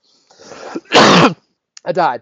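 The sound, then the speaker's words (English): A short, hysterical coughing bout from a person: a raspy throat-clearing hack followed by one loud, harsh cough, then a brief pause and a strained, voiced gasp or cough at the end. “Here's me coughing hysterically from a couple of podcasts.”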